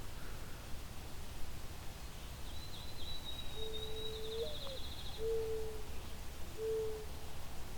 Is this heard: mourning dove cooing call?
yes